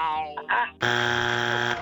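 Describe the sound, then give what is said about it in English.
Brief voices give way to a loud wrong-answer buzzer from a trivia quiz game, after a question about the 1969 AL Rookie of the Year: one flat, harsh, sustained tone that holds for almost a second before cutting off. “Nope, you're going to get buzzed.”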